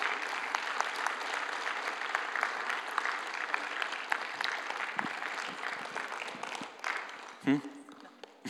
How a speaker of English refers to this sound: Yeah, you can clap. That'd be good.